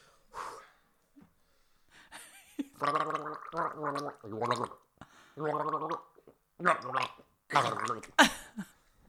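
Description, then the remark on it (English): Someone gargles about half a glass of water while humming the opening notes of Silent Night in a gargling game round, producing a series of bubbly, pitched tones in short phrases with breathy pauses between them, moderately loud. “The last song of the gargling round.”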